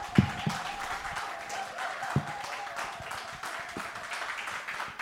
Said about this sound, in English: Louder clap offering, louder clap offering.